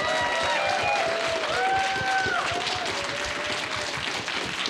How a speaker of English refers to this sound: And thank all of you for coming to Dear Jazzie 2023. Let's get a big round of applause, specifically for everyone out here.